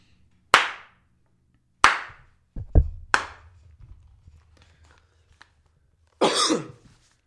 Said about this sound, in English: All right, clap a couple times.